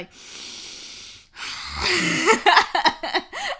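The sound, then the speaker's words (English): A voice imitates loud, creepy heavy breathing: a long noisy inhale, then a harsher, raspier exhale with wheezy, voiced tones. Prominent, with no other sounds around it. “What's loud breathing?”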